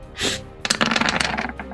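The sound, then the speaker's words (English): Dice rattle briefly, then tumble across a hard tabletop in a quick run of clicking bounces that settles after about a second, rolling a 19 for an attack. No one speaks. “19 on the dice.”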